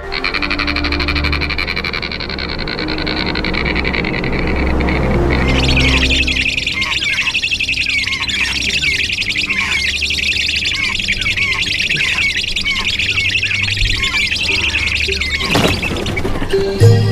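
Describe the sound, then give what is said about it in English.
An anhinga, also called water turkey or snake bird, gives a dry, rattling call: a rapid series of harsh clicking croaks repeated over several seconds, loud against a busy background of other birds and frogs. “Here's the rattly sound of the Anne Hinga.”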